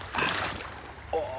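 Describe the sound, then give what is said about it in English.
A burst of sloshing, splashing water as someone in cheap waders wades down a deep river with a rocky bed while geocaching, fading into a low watery hiss; a brief voice murmur comes in near the end. “This was supposed to be a paddle cache, but I decided to go for a little wade down the river.”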